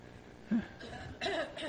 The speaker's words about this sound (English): Was that coughs? Because are you a bunch of coughing perfectionists?